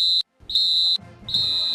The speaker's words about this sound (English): We haven't been doing the three-minute warning, but we're getting close to football, so I think it's time to blow the whistle here and get a little three-minute warning. And here we go.